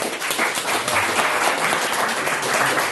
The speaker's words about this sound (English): So maybe we can give them a bit of applause.